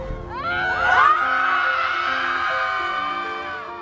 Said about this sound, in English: We caught up with a group of moms letting out a collective scream, releasing their pandemic pressures in the process.